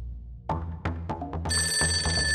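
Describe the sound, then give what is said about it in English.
An old-style telephone bell rings clearly: a few sharp clangs at first, then a continuous bright, metallic ring that holds steady over a low, rumbling background; the special line at J. Edgar Hoover's home in Washington, D.C., ringing around 2 a.m. “in Washington, D.C., the special line at J. Edgar Hoover's home started ringing.”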